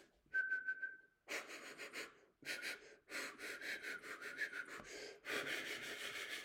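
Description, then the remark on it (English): A person whistles a short, steady high note, followed by a series of loud, breathy airy blasts and hisses that come in uneven bursts with brief pauses between them. “What I do though is I'm aware that I whistle.”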